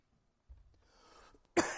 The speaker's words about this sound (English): What a bad time to have a coughing fit in the middle of a pandemic.